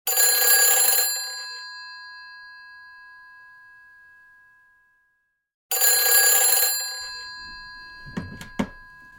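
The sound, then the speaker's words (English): An old-style telephone bell rings loudly twice at midnight, each metallic burst trailing off into a long fading hum, followed by a couple of clattering knocks as the handset is lifted. “I tossed and turned relentlessly until the phone rang at 12 o'clock.”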